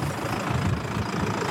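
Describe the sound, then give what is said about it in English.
A farm tractor comes this way, its engine chugging with a steady, deep rumble, holding a fairly even loudness throughout with no voices over it. “Just wait for this tractor. He might want to come. I think he's going to come this way.”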